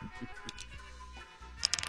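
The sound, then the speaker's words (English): Two dice are rolled to set a quiz handicap and land on four and four. They clatter in a short burst of quick, light clicks and taps, then a pause and a final few sharper knocks as they come to rest, with no talking. “First thing you need to do is roll the dice.”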